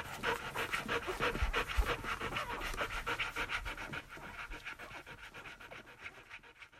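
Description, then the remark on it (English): Lola, a golden retriever that cares for a litter of puppies, pants rapidly and steadily, a rhythmic string of quick breathy huffs lasting several seconds with no talking. “At least for now, for this litter, Lily can rely on Lola the Golden Retriever to take care of her puppies as only a dog can.”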